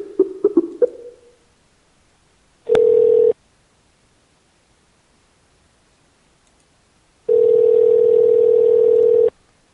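telephone call tone

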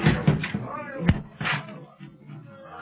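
door being broken down

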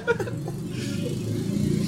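motorcycle passing by

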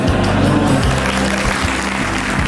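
engine revving up

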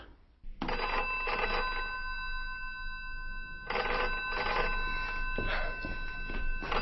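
telephone ringing

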